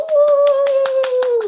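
A quick run of steady, evenly spaced claps, about eight in a second and a half, under a long held vocal whoop. Participants on a video call unmute their mics to give speaker Antonio T. Smith Jr. a round of applause.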